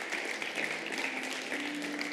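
A church audience bursts into sustained applause, giving God a hand clap of praise after a closing prayer: a dense, steady wash of many hands clapping at once, filling the whole stretch with no speech over it.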